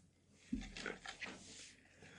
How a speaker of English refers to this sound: Why are you always climbing on people's furniture and shit, dog? Always on top of people's cars and shit. You're always on, like, bitch, why don't you climb on top of me? Hey. Why are you climbing on shit? Stop climbing on furniture, dog.